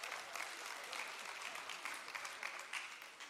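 Sustained audience applause fills the whole stretch, a dense, steady wash of many hands clapping at once with no voices standing out.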